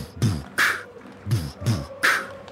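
A large crowd pounds out a steady stomp-stomp-clap rhythm: two deep thudding stomps followed by a sharp, bright burst of massed clapping, repeated twice with a loose, roaring edge.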